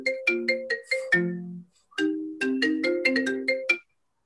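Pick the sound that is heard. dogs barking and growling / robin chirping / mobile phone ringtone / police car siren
mobile phone ringtone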